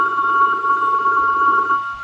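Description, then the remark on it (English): A telephone rings with a steady, buzzing electronic tone lasting nearly two seconds, fairly loud, then cuts off abruptly. No one speaks over it. “We have a telephone call just for a moment.”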